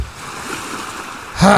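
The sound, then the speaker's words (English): A steady, rushing wash of ocean waves fills the moment at moderate loudness, and near the end a man's voice starts speaking over the surf. “We're listening to the waves.”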